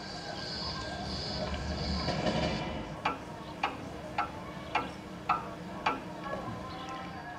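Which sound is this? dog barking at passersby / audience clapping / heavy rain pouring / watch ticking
watch ticking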